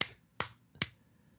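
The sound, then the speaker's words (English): Three sharp hand claps from a 2003 recording on a double album, in a quick, evenly spaced row, each a crisp slap that fades fast, with no voices around them. “Three claps.”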